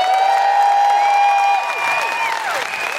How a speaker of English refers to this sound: Big round of applause for Ruth Madeley.